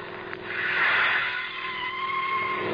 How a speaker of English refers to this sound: Looks like we've blown a front tire. Seems like we ran through a mess of broken glass.